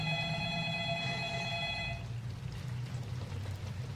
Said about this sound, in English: Phone is ringing. Just hit 10 o'clock and the phone's ringing. Oh no.